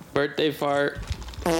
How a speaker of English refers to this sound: Birthday fart. Drop an extra one for good luck. One more.